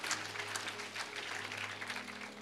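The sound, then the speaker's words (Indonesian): A church audience bursts into sustained applause for God, a dense, steady patter of many hands clapping at once, with a low hum running underneath throughout. “Tepuk tangan buat Tuhan.”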